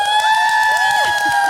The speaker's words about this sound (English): And we're recording live, guys. So let's clap it up. Y'all can do better than that.